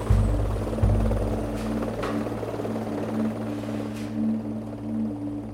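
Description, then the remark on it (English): Helicopters arriving at a patrol's extraction point to take soldiers away roar steadily, a deep thudding rotor drone with a constant low hum and engine whine layered over it, loud throughout with no voices. “Soon after, the helicopters arrive to take the soldiers away.”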